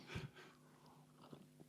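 A quick sip of a spritz drink, a short wet slurp followed by faint swallowing and soft breathing in an otherwise quiet moment with no talking.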